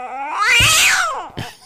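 A cat lets out a long, loud, drawn-out yowl that rises and then falls in pitch, followed by a brief second cry. Clear, with no talking.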